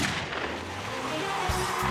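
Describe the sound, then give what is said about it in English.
A starting gun fires to start a race of 27 street-legal family sedans on the sand of Daytona Beach, its sharp crack set within a loud, dense, sustained roar of noise that fills the whole clip, with a heavier low thump about midway through. “The starting gun fired, and absolute chaos erupted across the thin ribbon between land and sea.”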